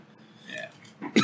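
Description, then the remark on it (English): A rough throaty rasp builds and then breaks into a sharp, loud cough burst at the very end, with no talking around it. “Sorry, I got a cough now.”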